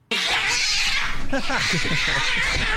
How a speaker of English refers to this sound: What happened? The cat got its nail stuck in the zipper. The guy's pants zipper.